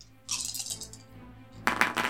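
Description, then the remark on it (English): Dice clatter and roll across a hard table in two quick bursts of bright clicking, fairly loud, with a short pause between them and no talking. “The dice hate it. The dice hate it a lot.”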